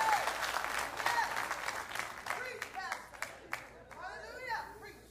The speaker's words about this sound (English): Do you like this deal? Well, give God a hand clap.